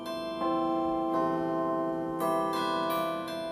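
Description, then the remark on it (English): Tuned metal-rod university chimes, played on the roof of Geisel Library, ring out like cast bells, about seven struck notes at an uneven pace, each tone sustaining and overlapping the next in a rich, resonant wash with no voices. “The way these chimes work, you can see that there's some metal rods specially tuned to sound as if they're a cast bell, and they really sound spectacular.”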